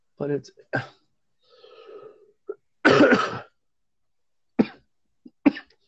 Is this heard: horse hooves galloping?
no